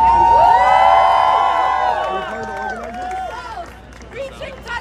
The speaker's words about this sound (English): They are celebrating and cheering for rockets being fired on civilians.